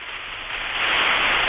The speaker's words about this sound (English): Don't worry, I think it's just rain.